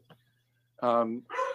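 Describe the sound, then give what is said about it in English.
A dog barks twice, loudly, each bark drawn out and tonal, over a steady low electrical hum. “That's not my dog.”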